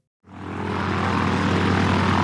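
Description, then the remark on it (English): A propeller airplane engine kicks in abruptly and settles into a steady, loud drone with a low throbbing hum, continuing without pause and with no voices. “Why are we on this airplane?”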